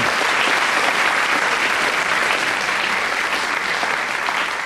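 Steady, full audience applause fills the whole stretch, dense clapping from many hands at a constant loudness with no talking over it.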